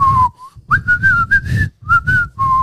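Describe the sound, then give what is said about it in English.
A person whistles the bouncy little Steamboat Willie tune, clear and fairly loud, with short melodic phrases broken by brief pauses for breath; no talking. “Yeah, you're better at whistling.”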